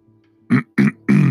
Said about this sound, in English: Let me clear my throat and say that again.